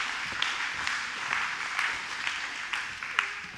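A crowd applauds steadily, dense overlapping claps forming a continuous wash of sound with a few sharper individual claps standing out, fairly close and moderately loud throughout.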